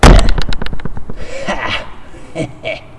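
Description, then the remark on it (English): A hand slaps a screen to kill a mosquito in a quick flurry of loud, sharp smacks, then a few softer, scattered thumps and rustles as the swatting winds down. “And I'm going to kill a mosquito on my screen right now, so this is going to be a little loud.”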